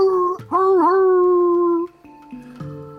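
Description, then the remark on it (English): A long, intimidating roar with a howling, tonal quality swells loudly and holds for over a second, then quieter, lower roars answer from somewhere further in town. “You hear a roar. And then from somewhere further in town, more.”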